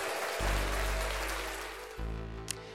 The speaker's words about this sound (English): You know, there's just something about that applause that puts a smile on my face, brightens up my day.